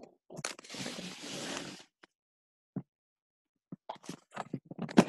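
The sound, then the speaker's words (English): A large dog snuffles and scrabbles around, starting with a long, breathy rustling burst, then a pause and a run of irregular scrapes, crunches and soft thumps. No one speaks. “Roaming around, scruffling.”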